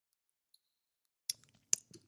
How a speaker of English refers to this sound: Let me just have a sip really quick and we're going to read it.